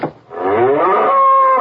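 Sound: cow mooing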